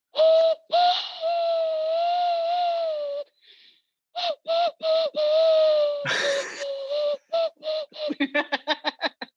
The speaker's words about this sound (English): Can you do a party trick or something quirky? I can whistle with my hands. Oh yes. Yeah, let's see if I can get this.